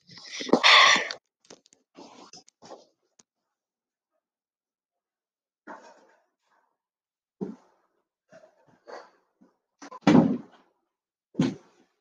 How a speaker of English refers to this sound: I'm sorry, I just needed to close the door.